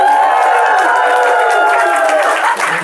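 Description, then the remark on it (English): A loud, enthusiastic crowd of Canadians at a summit cheers and shouts continuously, a dense wash of many voices with some clapping mixed in, holding steady throughout and dipping only slightly at the end. “Right, we had a good crowd in Atlanta about a month ago, but more enthusiastic crowd because they're Canadians.”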